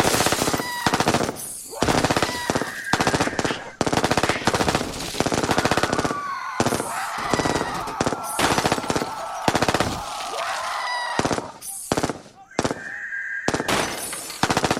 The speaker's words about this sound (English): We waited a while for the gunfire and the shrieks to go down. And when they did, we slowly crept out.